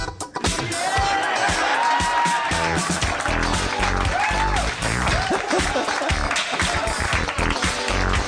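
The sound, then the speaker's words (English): A crowd bursts into sustained applause and cheering, dense and loud throughout, with whoops and shouts rising over the clapping. “Clap, clap, beep, beep.”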